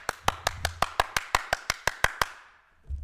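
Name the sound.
hand clapping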